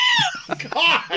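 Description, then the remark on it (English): A goat's loud, wavering bleat, shrill and almost human, quavering through a couple of strained cries in just over a second, alone with no talking. “That's the most horrifying sound ever. That's a goat?”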